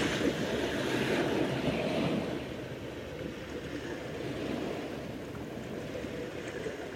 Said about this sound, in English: Tapping into this energy of the ocean. Letting the ocean sound current infuse our sound.